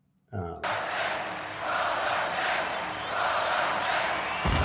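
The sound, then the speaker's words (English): A sudden loud explosion bursts in and rolls into a sustained, thick roar that holds steady for several seconds, full, with a crowd-like cheering texture layered through it, from the intro of the television show Roller Games. “And then that was an explosion.”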